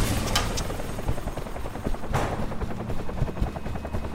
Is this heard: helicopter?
yes